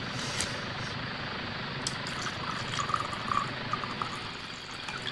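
A steady pour of Green Forest into a glass already holding a splash of lemon juice runs for several seconds, a soft continuous splashing with faint gurgles and a few small clinks along the way, no voices.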